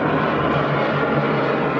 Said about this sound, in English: I thought it was an airplane flying over our house. We live by airport. Yeah, it sounded like it was really close, though. I thought the AC was coming on. I thought we were about to be bombed. Oh, yeah, my gosh, that was loud.